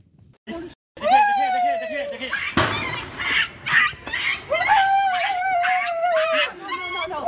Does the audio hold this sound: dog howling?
yes